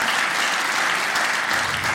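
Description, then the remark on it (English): A crowd claps steadily throughout for a high school math teacher in the audience, a dense, sustained wash of applause from many hands with no individual claps standing out and no talking. “We'll give her a round of applause.”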